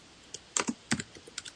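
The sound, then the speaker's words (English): Quiet typing on a computer keyboard as someone types out a chat message: a handful of irregular clicks and taps spread over a second and a half, with no voices. “I'm typing it. That's why it's slow and quiet.”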